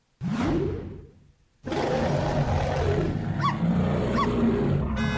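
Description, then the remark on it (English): A loud bear roar sound effect bursts out, fades briefly, then a second longer growling roar follows with a harsh rasp, no speech, just the deep bellowing of a big beast. “That means wrap it up then, or else you're going to bring out the angry West Hollywood bear.”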